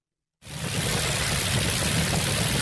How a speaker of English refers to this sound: That's actually the sound of its 12-cylinder engine in operation. It's a great sound.